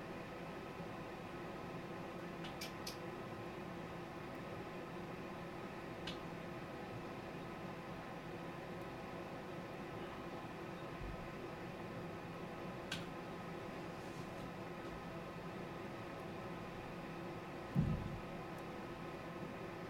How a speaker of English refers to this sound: Oh, you guys, the air conditioner just turned on. No, hold on.